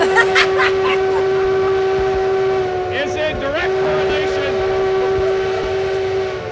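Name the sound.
steam train horn blowing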